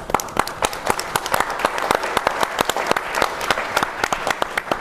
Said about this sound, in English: And so, I just, maybe a round of applause for Victor.